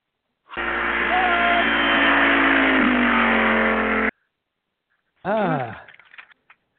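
A car engine roars loudly and steadily for several seconds, then cuts off. After a brief pause comes a short, rising burst of revving that quickly fades.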